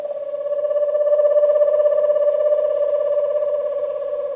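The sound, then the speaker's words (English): An eastern screech owl in an eastern woodland at nightfall gives a long, steady trill, a single mid-pitched quavering note that swells in and holds for about four seconds with no voices present. “In an eastern woodland, the eerie trills and whinnies of an eastern screech owl are among the first sounds of the night.”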